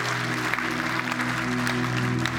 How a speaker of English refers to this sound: Let's just give them a warm clap for our appreciation. Thank you so much.